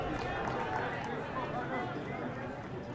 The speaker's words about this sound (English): The crowd buzzing tonight. Nice to see people at a ball game wearing short sleeves.